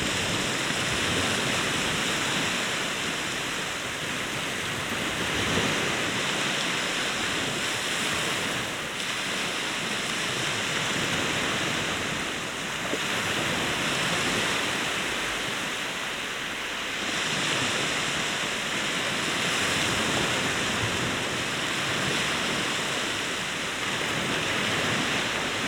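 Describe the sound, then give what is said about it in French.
Steady roar of ocean surf, waves breaking continuously with gentle rises and falls every few seconds, a dense wash of water noise filling the whole stretch with no voices. “La voix doit se couler entre les vagues pour se faire entendre.”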